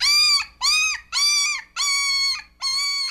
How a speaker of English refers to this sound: I but that's a puppy. What? Okay. A puppy who had his feelers hurt. Are you sure that wasn't seagulls? It says puppy whining on the screen, okay? Not seagulls call.